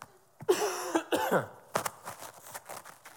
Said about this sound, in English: excuse me, I'm gonna cough here for a second.